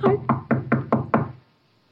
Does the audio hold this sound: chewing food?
no